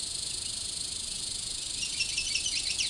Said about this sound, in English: Possible the other one was the same as the first, but this is getting far away unless the bird's following me, which is unlikely.